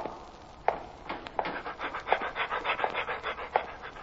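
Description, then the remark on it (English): Lassie, playing a prison dog named Cellmate (nicknamed Mate), pants rapidly and steadily, with quick rhythmic breaths repeating for several seconds and a few sharper gasps mixed in. No one speaks. “Well, today Lassie plays the part of a prison dog named Cellmate, and nicknamed Mate.”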